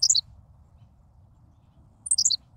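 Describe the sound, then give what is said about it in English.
A Henslow's sparrow gives its tiny, high hiccuping song twice, each burst lasting a fraction of a second, separated by a quiet pause over a faint low background rumble. “Amazingly, a Henslow's sparrow values brevity even more. That was it. In case you missed it, here it is again.”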